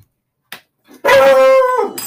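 A dog lets out one loud, drawn-out bark with a whining, yelping quality, close by. A faint click comes just before it, and no one speaks.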